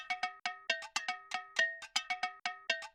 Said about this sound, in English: As well as looping the bell percussion.